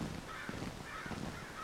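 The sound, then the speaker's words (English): Crows caw overhead in a run of harsh, raspy calls, about three bursts in quick succession, moderately quiet, with no voices present. “Overhead, a cloud of black birds soars and swoops.”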